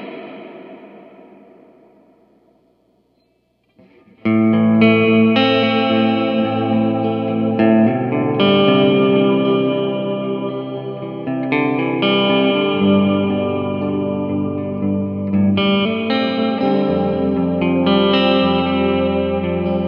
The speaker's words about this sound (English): Let's full crank that modulation. We got the modulation on 100%. And that pre-delay at like 45%. Uh-huh. I'm just going to do a slap so you guys can hear the reverb.